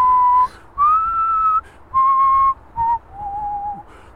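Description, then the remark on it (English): A slow, gentle melody, the music from a Hovis bread commercial, whistled by one person, five sustained notes with short pauses between them, clear with no talking. “That was the music from the Hovis commercial.”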